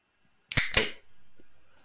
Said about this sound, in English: Yeah, I just did that. That is nice. I made a whole spectacle of opening a can of beer.